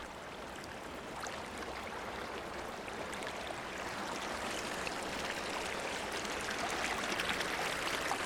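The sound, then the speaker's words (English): A steady rush of shower water, about 10 gallons from a river, entering a house through a pipe in the shower and running down a drain back to the river as someone bathes, a continuous hiss that swells slightly louder toward the end, with no voices. “That's the sound of 10 gallons of water entering my house through a pipe in the shower from the river and leaving my house through a drain to the river as I bathe.”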